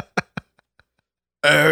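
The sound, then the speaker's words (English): A voice forces out a short, throaty fake burp, a couple of quick guttural bursts, followed by a louder, drawn-out voiced sound. “That was a terrible fake burp.”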